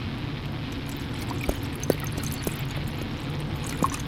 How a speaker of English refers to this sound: So, I got some red wine here. If you don't mind joining me for a moment. Let's get a pour sound.